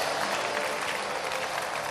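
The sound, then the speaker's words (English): Steady applause from a crowd, dense and continuous for the full two seconds, a broad wash of many hands clapping at once with no voices standing out. “Anybody clapping today?”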